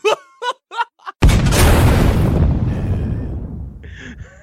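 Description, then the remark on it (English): In the jingle for the 'COVIDiot of the week' segment, four short sung vocal syllables lead straight into a sudden, loud explosion, whose deep rumbling roar fades out over a couple of seconds before faint tonal sounds close it. “There's still the derpy guy and the explosion that I'm into as well.”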